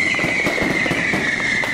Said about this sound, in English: Hello and welcome to episode 150 of We Are Going Up. Cue the fireworks.